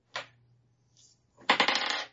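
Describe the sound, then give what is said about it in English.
Dice clatter on a hard surface as they are rolled for a strength check: one sharp clack, a brief pause, then a quick run of rattling bounces that tumble and settle. No voices. “Ooh, I rolled a 19.”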